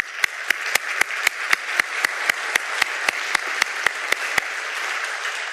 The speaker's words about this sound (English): we're very, very fortunate to have folks here from Christian Life, Prison, and Recovery Ministries. If you folks could raise your hands, we could give them a round of applause.